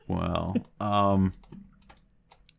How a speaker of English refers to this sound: Well, I mean, I can hear you clicking on your keyboard.